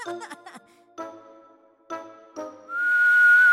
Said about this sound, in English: A low whistle outside recalled him to the window. The Italian was standing below, laden with parcels.